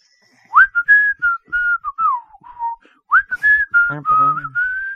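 A guide whistles a loud, lively tune as he leads the way down a path, with quick gliding notes in two phrases separated by a short pause, and a brief lower vocal sound near the end.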